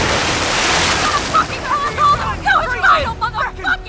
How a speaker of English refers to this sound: Fulmer rears up on a wave as I turn in again. Our boat may be older and slower, but her fiberglass hull is thicker.